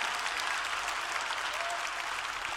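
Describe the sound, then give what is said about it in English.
A crowd applauds in praise of God in a steady, dense wash of overlapping claps that holds at an even, moderate loudness throughout, with no voices standing out. “Come on, clap your hands and praise God for God.”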